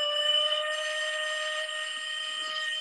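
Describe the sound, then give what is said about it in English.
A steady, piercing end-of-day whistle holds one shrill pitch with rich harmonics, sounding continuously and loud for the full stretch without breaking. “And that's that whistle. So that just about confirms it for me.”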